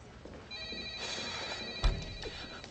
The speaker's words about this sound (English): I'm not following you, but the phone is ringing.